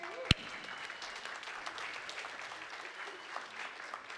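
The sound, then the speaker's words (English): A crowd applauds steadily for several seconds as Zacchaeus makes his way down from the balcony, a dense, even patter of many hands clapping with no pauses. “Everybody give Zacchaeus a big round of applause.”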